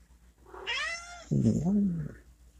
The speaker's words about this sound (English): Come in, Tyler. Meow, meow, meow. What did you meow for? You got your food right there.